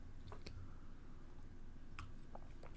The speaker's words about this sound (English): Anyway, just taking a nice sip of this Jameson's Stout Barrel, which is fantastic, by the way.